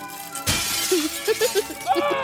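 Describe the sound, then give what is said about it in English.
A sudden burst of window glass shattering in the DICOM video game Paper Route, where players earn points for breaking windows, a sharp bright crash that fades over a second, followed by a string of short, bouncy tonal blips like simple electronic game sounds. “But earn points for breaking windows and damaging the property of non-subscribers.”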